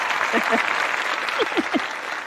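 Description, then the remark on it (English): Steady audience applause welcoming an author as a guest, a dense wash of many hands clapping at a fairly loud level, with a few brief vocal whoops or calls rising over it. “We finally got the clap.”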